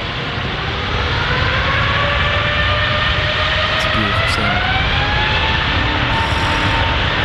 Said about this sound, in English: that, my friends, is a Trent 900, which is one of the engines that you can have fitted onto your Airbus A380